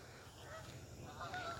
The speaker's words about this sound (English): And Lord, as the ducks fly over us, we pray for the animals.